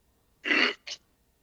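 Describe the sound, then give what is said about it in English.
One sharp, forceful sneeze bursts out, followed a beat later by a short, hissy sniff or breath, then silence. There's no talking. “It makes me sneeze.”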